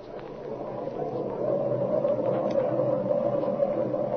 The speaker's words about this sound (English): But now it is morning and a superb day for flying. Here are Jimmy and Speed leaning against the lower wing of their training plane as Flash Lewis warms up the engine.